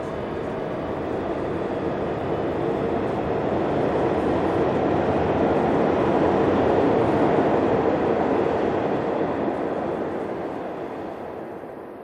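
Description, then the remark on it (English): A subway train rumbles and roars steadily, swelling a little as it gets underway, then begins to fade as it pulls off. No voices. “He turned abruptly and saw the coffee toner girl again, some hidden secret on her lips, before the train kicked into motion and the moment was locked behind them all.”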